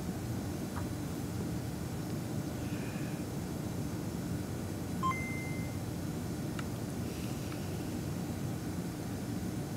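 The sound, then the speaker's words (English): A few short, thin electronic beeps from a Game Boy cartridge running CircuitPython chirp at irregular moments, fairly faint against a constant loud rumbling background noise, with no talking. “So that's CircuitPython running on a cartridge. There's a little Adafruit logo around. Beep, beep.”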